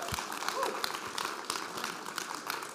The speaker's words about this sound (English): Can we give everybody that served as a veteran just a big round of applause?